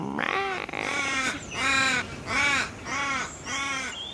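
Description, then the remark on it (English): Crows caw outside a window, about six harsh, drawn-out calls in a steady rhythm, loud, with no voices present. “And the sounds of crows crawling outside my window.”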